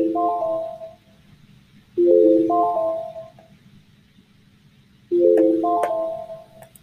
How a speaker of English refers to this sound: Caught my alarm going off. Hold up, hold up.